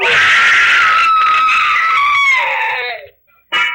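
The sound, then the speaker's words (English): A loud, piercing scream held for about three seconds, its pitch sagging slightly toward the end, followed by a brief silence and the abrupt start of another shrill cry. “She never heard that scream.”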